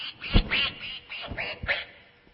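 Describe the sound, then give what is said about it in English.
A duck quacks several times in quick succession, harsh and nasal, loud, with short gaps between calls and no one speaking. “And so, well, the duck is going to talk for a minute.”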